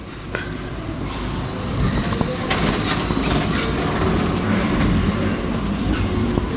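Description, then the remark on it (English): A big revolving door in a rear foyer turns with a steady, low rumbling whir, broken by a few sharp clicks and knocks from its mechanism. The sound holds at a moderate, even level throughout. “Now we come into a rear foyer. Yeah, and another big revolving door.”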